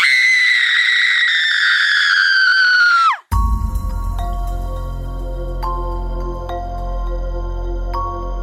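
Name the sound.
scream sound effect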